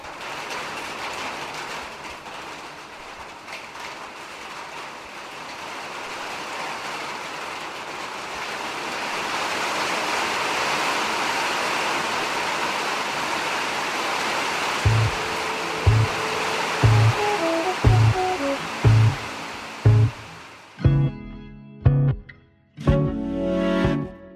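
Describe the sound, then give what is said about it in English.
Steady, dense rain drums on a metal roof in an enveloping hiss; near the end, sharper metallic pings and knocks fall in a regular rhythm. No one speaks. “wanted to hear the sound of rain falling on a metal roof because it reminds Carlos of home”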